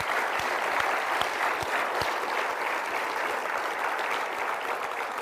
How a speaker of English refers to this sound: Well, let's give the Lord a hand clap of praise. Amen.